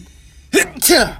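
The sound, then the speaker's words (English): A single loud sneeze: a brief voiced intake followed by a sharp, breathy explosive burst, heard alone after a moment of near silence. “I'm going to sneeze.”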